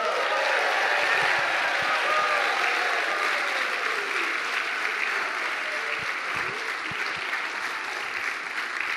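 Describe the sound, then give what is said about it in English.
A large audience claps and cheers loudly and steadily to welcome up the new executive director of the preschool, a dense wash of applause with scattered whoops and shouts running throughout without a break. “you have to just like let her know that you are so excited that she just won the golden buzzer, which is being the executive director of the preschool.”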